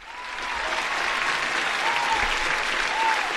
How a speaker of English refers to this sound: It'll be one of our first videos to hit the 1,000 mark. Applaud that.